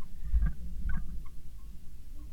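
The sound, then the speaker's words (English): A chair creaks in two short, strained squeaks about half a second apart, heard faintly over a steady low rumble with no one talking. “These chair noises, like, I need it's just your chair.”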